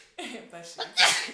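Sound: sneeze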